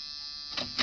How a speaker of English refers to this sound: Try the buzzer